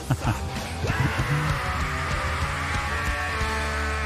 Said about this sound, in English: That wasn't a bad scream.